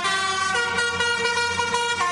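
A loud musical car horn honks out a bouncy children's tune, its bright, brassy notes stepping through the melody in quick succession, close and continuous with no talking.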